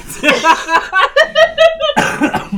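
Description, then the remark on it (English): A loud run of harsh coughing bursts, broken up by short voiced, laugh-like sounds, ending in a final heavy cough. “I apologize for the cough.”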